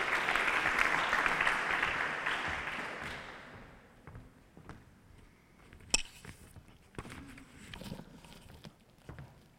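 An audience applauds in a dense, loud burst of clapping that fades after a few seconds, leaving scattered individual claps and light taps trailing off.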